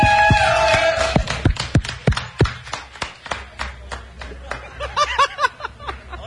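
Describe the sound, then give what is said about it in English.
An audience claps in loose, uneven bursts for several seconds for a man who has taken his shirt off on stage, with scattered laughter and chuckles rising near the end. “Everybody give him a big round of applause for his beautiful body.”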